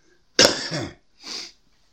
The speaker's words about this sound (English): damn, I'm by myself, but I can't even get the coughs out.